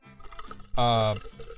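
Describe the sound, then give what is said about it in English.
A short, loud burst of a second sparkling water being opened and poured, about half a second long, set between quieter stretches of soft voice-like murmuring. “Well, I'm going to crack open a second sparkling water here.”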